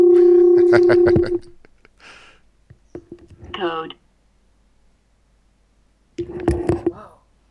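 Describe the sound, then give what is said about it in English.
A cell phone is dialed to place a call, its keypad tones sounding in short, steady electronic beeps, mostly at the start and again near the end, with brief clicks and some faint vocal sounds between. “And we're calling from his own cell phone number.”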